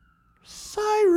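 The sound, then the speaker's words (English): Several emergency vehicle sirens wail outside: a thin steady tone first, then a louder, rising-and-falling wail that sweeps downward in pitch over a brief hiss of noise. “Sorry, there's a bunch of sirens and they've thrown me off.”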